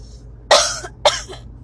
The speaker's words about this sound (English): Excuse me. And, you know, it just, that's kind of funny how I just cough right now and speaking about this, but my throat's just dry.